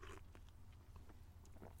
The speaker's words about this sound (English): I'm going to have another slurp.